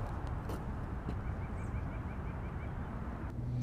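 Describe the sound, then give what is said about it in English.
Faint, evenly spaced bird chirps repeat in a short series midway through, nearly buried under a loud, steady outdoor rumble like wind or traffic. No one speaks. “Listen to that bird. Isn't that beautiful?”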